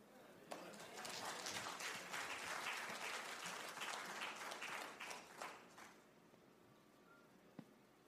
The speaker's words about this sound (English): Thank you. Let's clap to encourage them one more time.